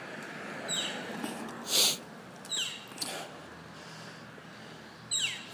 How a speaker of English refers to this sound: So that's weird. There's a couple crows on a fence. It might be like a baby crow or something. Or maybe it's baby crow's first day out. It doesn't sound like a crow, though.